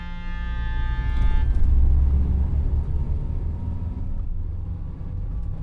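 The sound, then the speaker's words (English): A car engine rumbles low and steady, a tonal hum giving way to broader road noise as the vehicle rolls along slowly in the Ozark Mountains of Missouri, with no voices. “I got into the car again and drove on slowly.”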